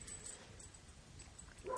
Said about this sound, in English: I hear Enzo barking upstairs